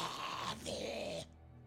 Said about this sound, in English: Doesn't sound very tame. It's like blowing up against the side of the wagon. There's just cracking, splintering wood. Oh, yeah. Great tiger sound effects.